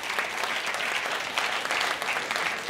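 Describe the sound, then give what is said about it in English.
An audience at an Intelligence Squared debate at Florence Gould Hall claps steadily for the people who asked questions, a dense, even wash of many hands with a bright crackling texture that holds at a fairly loud level throughout, with no voices standing out. “A round of applause to all of you.”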